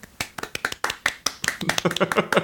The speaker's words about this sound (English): very golf clap style round of applause for us.